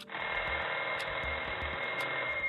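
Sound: telephone ringing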